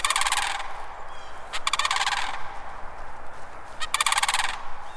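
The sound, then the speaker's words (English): Mississippi sandhill cranes in wet pine savannas near the Gulf Coast give three loud bursts of rolling, rattling bugle calls, each a second or less, with short gaps of quiet between them and no voices. “On more than one morning, I've heard the arrival of these cranes, the slap of their substantial wings, and the echo of their almost prehistoric calls across the wet pine savannas near the Gulf Coast.”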